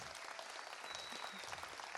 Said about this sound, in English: Can we just give him an applause?